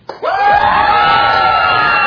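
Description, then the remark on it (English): A section of an audience bursts into loud, sustained cheering and shouting after a brief pause, many high, excited voices yelling together for a couple of seconds as they practice cheering for a team. “Everybody over here, you're cheering for the team over there. Let's practice.”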